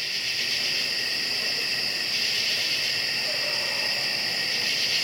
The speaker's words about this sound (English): So I head down the hill to record the summer crickets and katydids in stereo.